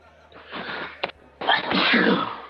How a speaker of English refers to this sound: I woke up at 3 in the morning and I'm sneezing a lot.